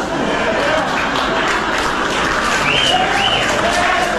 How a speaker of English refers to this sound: The laughs, the groans, then the couple of cheers, smattering of applause, more groans.